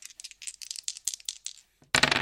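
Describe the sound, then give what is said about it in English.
Dice rattle in a series of quick, sharp clicks for a couple of seconds, then land with a louder clatter on a hard surface, with no talking. “Okay then, roll your dice.”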